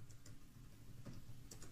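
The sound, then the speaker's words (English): Quick, light keystrokes tap out on a computer keyboard in an irregular rhythm, a handful of soft clicks against a low, steady background hum. “I'm typing.”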